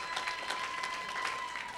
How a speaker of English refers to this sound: Can my guest clap for me?